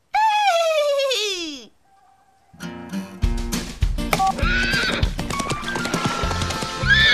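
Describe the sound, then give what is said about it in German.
A horse, being called, lets out a loud, quavering whinny, then after a short pause comes a busy stretch of hoof clip-clops and rustling, with a few bird-like chirps over it. “Helft mir bitte dabei, das Pferd zu rufen.”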